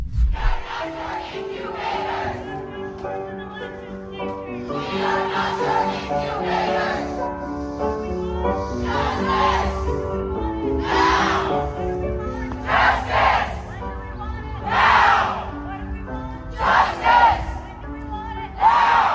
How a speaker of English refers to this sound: You can hear them screaming and shrieking and going up and down the residential neighborhood.